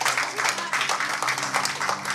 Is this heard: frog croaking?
no